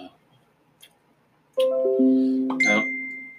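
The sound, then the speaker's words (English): A bright electronic notification chime rings out: a few quick ascending tones that stack and sustain, clearly audible, following a brief quiet moment with faint background murmur. “I probably should disable my notifications.”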